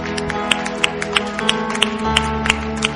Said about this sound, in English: And I think we should just give God a round of applause for what He's done.